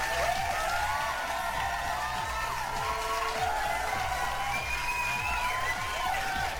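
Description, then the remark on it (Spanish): A crowd applauds and cheers steadily to welcome Mary Queen, a model from the Czech Republic, with dense clapping, scattered whoops and shouts rising over the noise, sustained loudly throughout. “Un pinche aplauso.”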